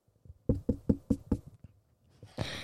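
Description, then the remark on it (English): Five quick, evenly spaced, solid knocks on a door, followed by a short pause and a brief hiss of noise at the end. “He walked up to it and knocked on the door.”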